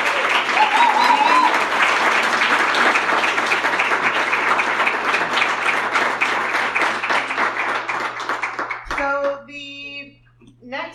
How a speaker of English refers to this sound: If we can give one more round of applause, thank you guys.